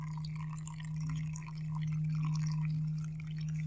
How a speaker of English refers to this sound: So I'm doing 22 grams of coffee, and then we're going to pour, including pre-wet, 300 grams of water. And this is what we're doing, that golden line coffee is this pour here. It'll make about 300 milliliters.